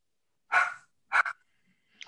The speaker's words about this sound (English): Somebody's dog is barking, but that's okay.